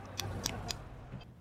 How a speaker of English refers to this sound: Wow, and now he's riding the bike, using the clicking sounds to figure out where the obstacles are on the road. I mean, that is mental, isn't it? That's amazing. He's cycling down like a perfectly large road, echolocating his way down it.